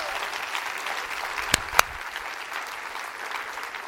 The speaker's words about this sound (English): Come on, let's clap all for Jesus here tonight. That's who gets the praise. The Lord gets the praise. Come on.